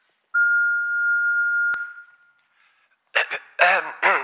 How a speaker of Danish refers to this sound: Jeg kan desværre ikke tage min telefon lige nu, men du kan lægge en besked efter biptonen.